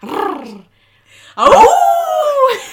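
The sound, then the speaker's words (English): A man imitates a wolf, giving a short vocal yelp, a brief pause, then a loud, drawn-out howl that slides downward in pitch before fading. “He gives us a roll of a tongue. He gives us a howl.”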